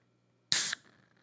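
A drink is cracked open with a sudden sharp hiss of escaping gas lasting a split second, then a soft, faint fizz of foaming that trails off. No one speaks.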